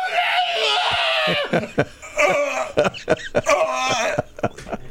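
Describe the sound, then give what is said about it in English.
A woman screams in anguish on a sidewalk when it was announced that Trump won, a long strained wail breaking into sobbing gasps and shorter cries, loud, with no talking over it. “Yeah, we're complaining, but we're not on the sidewalk with our eyes up screaming, you know, like that girl did.”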